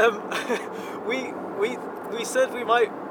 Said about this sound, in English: And today we are recording in the car driving north on the M5.